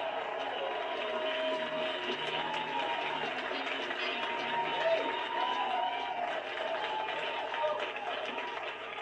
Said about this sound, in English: Yay. Applause to buy time so I can think of some clever shit to say.